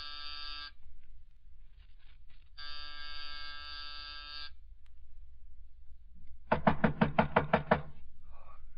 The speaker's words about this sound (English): It was close to 5:00 when I rang his doorbell.